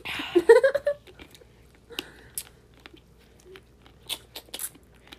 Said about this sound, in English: Hold on. I actually started chewing a Starburst.